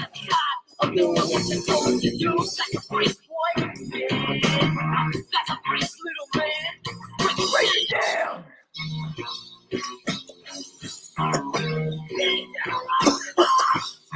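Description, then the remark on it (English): Repeated loud coughs and throat-clearing bursts land in a steady rhythm, in time with music, with vocal sounds mixed in. “You were coughing on beat.”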